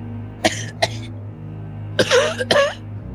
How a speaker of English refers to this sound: Coughing, and then I cough.